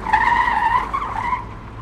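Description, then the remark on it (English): The tires of an old, long, boxy Buick screech to a stop in a sustained, high-pitched squeal lasting over a second, wavering slightly before fading, with a low engine rumble underneath and no voices. “Then it screeches to a stop and backs up.”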